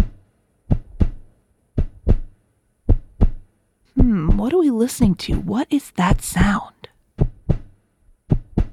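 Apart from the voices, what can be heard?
heartbeat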